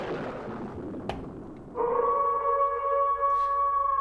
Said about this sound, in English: I like that one because that sounds exactly like the wolf howl at the beginning of Buffy.